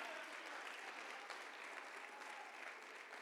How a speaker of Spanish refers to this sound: Démele palmas al Rey con todo el corazón.